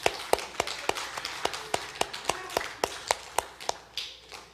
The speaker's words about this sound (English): We want to give you a flower for today. To honor you, and so we can applause. Thank you, mothers.